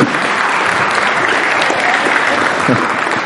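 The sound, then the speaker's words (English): A crowd claps steadily for a few seconds, a dense, even wash of many hands with no pauses, loud throughout and with no voices standing out, applauding a person who has just been given a sweet. “Give him a big hand, round of applause.”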